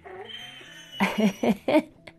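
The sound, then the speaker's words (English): A pet dog vocalizes in the background, starting with a thin drawn-out whine, then four short, moderately loud yips in a quick, even rhythm. No one speaks. “If you can't hear, my dog in the background is saying, it's time for something.”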